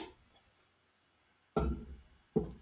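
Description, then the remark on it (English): Two solid thumps about a second apart, a heavy clunk followed by a shorter knock, as an office door is opened and then shut, with quiet in between. “Let me get the door.”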